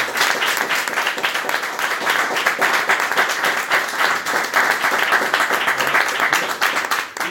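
Sustained applause from a sizable audience fills the space, dense overlapping clapping that stays loud and steady for several seconds before easing slightly at the end.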